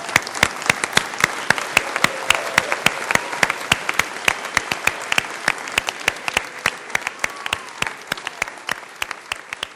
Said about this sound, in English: And we normally don't do this, but because it's Easter, and I want you to know how important this is, that we celebrate with you as your family, if we could just stand up and give them a loud, loud standing ovation and round of applause.